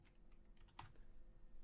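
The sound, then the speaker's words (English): Quiet typing on a computer keyboard: a short run of soft, irregular key clicks with one sharper tap near the middle, over low background hum and no voices. “Let me look at the keyboard like a true pro.”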